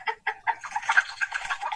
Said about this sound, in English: Sound is chicken.